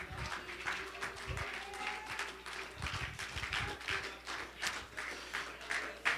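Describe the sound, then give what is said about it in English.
An audience claps their hands unto the Lord in a steady, dense wash of applause lasting several seconds, with a few voices faintly mixed in beneath the clapping. “I wonder if you will clap your hands unto the Lord.”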